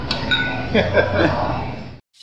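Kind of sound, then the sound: household object, glasses clinking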